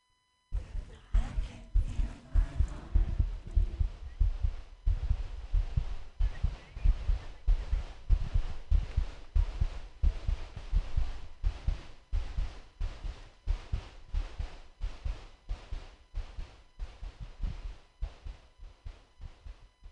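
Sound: heartbeat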